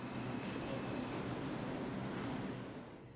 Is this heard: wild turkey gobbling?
no